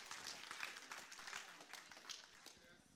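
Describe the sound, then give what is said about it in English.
A church audience claps together in the sanctuary in a steady, dense burst of applause for the Lord, with scattered voices mixed in beneath the clapping. “Applaud the Lord.”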